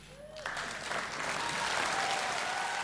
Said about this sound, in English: Well done, Tom. Well done. Yeah, keep those applause going.